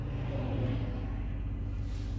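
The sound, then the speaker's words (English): A steady low rumble of road traffic passing a driveway, vehicles droning past at a constant moderate level with no voices and no distinct pauses. “I'm sitting here trying to get out of my driveway because of this stupid-ass traffic.”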